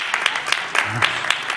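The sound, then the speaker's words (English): An audience claps to signal they think an item sold on eBay, in a dense, steady patter of hand claps, moderately loud, with a few sharper individual claps standing out and a faint murmur of voices underneath. “If you're really confident that this sold, I want to hear your hands clap, okay?”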